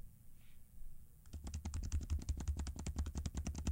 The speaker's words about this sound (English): Now let's do the 15-inch. Now you can kick back in your favorite comfy chair and listen to me touch keys.